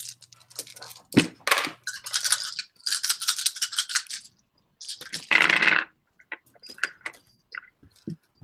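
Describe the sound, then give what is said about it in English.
Several dice rattle as they're shaken, then clatter and tumble across a hard surface in quick bursts, crisp, with scattered clicks as they settle, rolled for damage in a tabletop game. “Who wants to roll that for him?”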